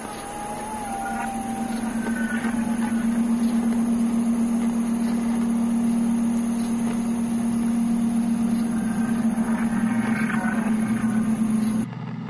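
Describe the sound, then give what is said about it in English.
A car drives steadily through heavy rain on a flooded interstate in Arizona, wide sheets of mud-red water spilling over the road, semi-trucks crawling at 30 miles an hour, wipers unable to keep up; a constant engine hum under a broad wash of road spray and hiss, with faint passing tones, ending abruptly. “Wide sheets of mud-red water spilling over the interstate. Semi-trucks crawling at 30 miles an hour. The windshield wipers can't keep up.”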